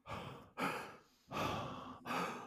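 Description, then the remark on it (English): A voice mimics slow, deep breathing: a steady run of breathy inhales and exhales, each lasting about half a second to a second, with no words spoken, imitating an unconscious injured man breathing more regularly and less shallowly but still in distress. “I mean, he's breathing far more regular mm-hmm. and not as shallow, but you can tell he is still in duress.”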